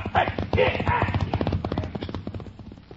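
Horses ride off with a rapid, steady clopping of hooves, loud at first, the rhythmic beats easing slightly as they continue over a rough background.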